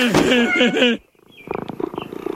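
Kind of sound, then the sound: animal, cat purring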